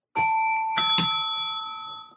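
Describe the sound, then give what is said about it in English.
A bright bell chime rings out sharply, with a couple of quick extra strikes just after, then a clear sustained tone slowly fading over two seconds. No voices. “Hit your bell.”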